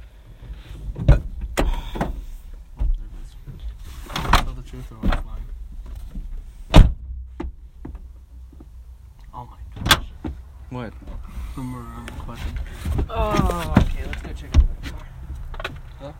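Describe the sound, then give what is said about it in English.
A car trunk is opened and its door mechanism operates, with a series of sharp mechanical clunks and latch clicks over a low whirring motor, while voices murmur briefly near the end. “open up the trunk.”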